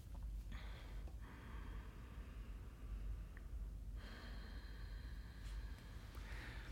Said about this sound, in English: So deep breaths are good. Yes, right now. Deep breathing.